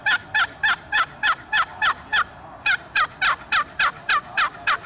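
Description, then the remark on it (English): A steady series of turkey hen yelps played on a cherry box call with a waterproof surface, a medium mild pitch call: about eighteen sharp, evenly spaced notes in two runs with a brief pause between, fairly loud with no talking. “And even lighter yet with the waterproof surface is the cherry, and that's gonna be really a real medium mild pitch call.”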